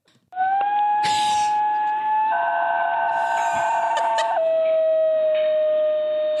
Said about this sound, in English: Opera singers, apparently, have expressed a particular interest in this vocally skillful canine.